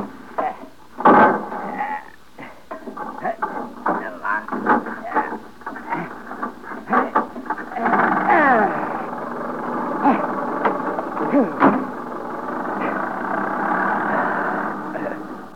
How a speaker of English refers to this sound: I'll take you in my motor car. Oh, now. You will go slowly, won't you? Oh, very slowly. There. You get in. I'll crank the engine.